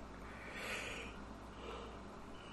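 human body sound, a person yawning

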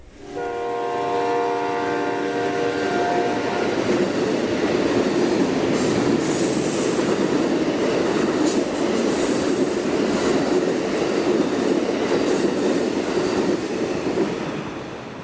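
vehicle, train moving on rails

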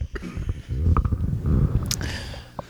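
human body sound, burp into the microphone

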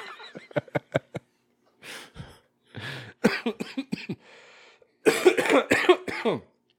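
human body sound, coughing

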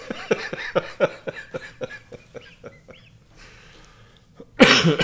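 human body sound, cough

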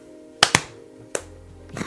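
human body sound, single hand clap

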